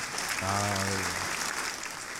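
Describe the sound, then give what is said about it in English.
A steady applause sound effect, played to wrap up a segment, fills the short clip with dense clapping throughout, and a brief low, droning voice-like tone rises over it near the start before fading back into the clapping. “I like the applause.”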